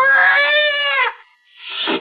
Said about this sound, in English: It was a cat. That scrawny cat that Mother Willis had sneaked aboard in La Guara.